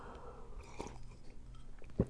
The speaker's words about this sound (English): Can you tell what color tea it is? That's green tea. I think it's got a different slurp than black tea.